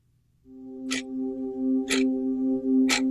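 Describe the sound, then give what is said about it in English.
In a political radio ad, a low, ominous synthesizer drone swells in and holds steady while a clock ticks sharply three times, exactly one second apart, loud over the sustained tone. “Now, if your children are listening with you, I beg you to move them away from the radio as the scary, scary synthesizer and the clock of terror combine to weave a web of horror for you in this ad.”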